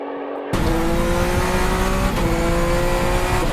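A rally car engine, heard as a sound effect, suddenly bursts in loud, roaring steadily at high revs with a brief break partway through like a gear shift, then pulling on hard.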